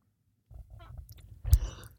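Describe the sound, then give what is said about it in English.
A sudden, explosive sneeze bursts out about midway, loud and breathy, after a stretch of low rustling and muffled breathing; nobody speaks. “Bless you.”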